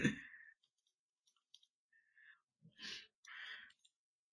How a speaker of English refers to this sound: Really? I'll type this. Let's see if you like this. Typing things on a podcast.